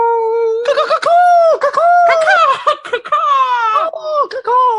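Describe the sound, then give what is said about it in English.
A single voice imitates a DJ record scratch, making quick, close warbling sweeps that slide up and down in pitch and sound somewhat like a bird call, with short breaks between bursts. “did that sound more like the bird call from Schitt's Creek and not a era DJ?”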